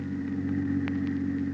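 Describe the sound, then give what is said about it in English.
A car engine hums steadily with a low, even drone, heard from inside a car being driven at 25 toward a plant, with a few faint clicks or rattles over the constant rumble. “The drive to the plant was something Peters would never forget.”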